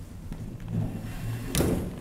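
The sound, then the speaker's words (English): A chair is dragged and shifted out of the way with low, grinding scrapes, then bumps down with a sharp thud partway through and a smaller knock at the end. No one speaks. “that chair is in the way, you'll forgive me.”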